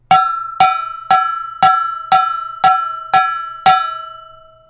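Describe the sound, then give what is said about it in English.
A cowbell is struck eight times at a steady, even pace, each bright metallic clank ringing briefly before fading. There is no talking. “if you had started off with cuckoo, and then hit the cowbell, I think that might have been more of a clue.”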